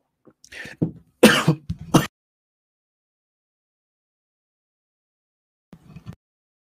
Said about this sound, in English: Whew. Sorry, guys. I had a lot of coughing happening there.